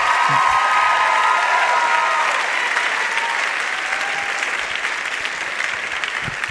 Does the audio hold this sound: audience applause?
yes